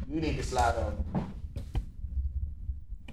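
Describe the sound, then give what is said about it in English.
A chair scrapes across the floor with a squeaky, grinding drag lasting about a second, followed by a few short knocks and bumps as it settles. “Oh, well, turn your chair.”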